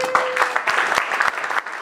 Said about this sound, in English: May I have your attention and please give a warm round of applause for our sheriff, Sheriff Villanueva.